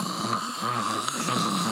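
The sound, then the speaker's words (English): A person loudly imitates snoring, a rough, rumbling, sustained snore that rattles continuously with no other voices. “I'm snoring super loud.”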